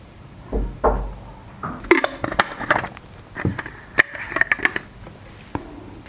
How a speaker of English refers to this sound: So hopefully this is a reminder that you need to sip on some water. On that note, let me sip on this.